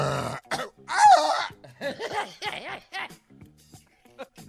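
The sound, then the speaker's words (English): A voice imitates an injured mountain lion with rough, strained growling and yowling bursts, one loud harsh cry followed by several shorter wavering, pitch-bending wails that trail off into quieter sputters. “That's an injured mountain lion.”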